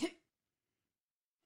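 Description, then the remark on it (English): A single quick sneeze bursts out, sharp and breathy, lasting only a fraction of a second before the rest falls silent. “Bless you.”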